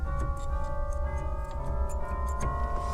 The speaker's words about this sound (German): Und diese Orgel, das ist auch keine normale klassische Kirchenorgel. Gibt es zum Beispiel Xylophon. Kirchenglocken.